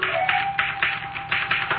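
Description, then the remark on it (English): Typewriter typing: a quick, uneven run of bright mechanical key strikes clacking one after another for about two seconds, fairly loud and steady, with no voices. “Look, the typewriter.”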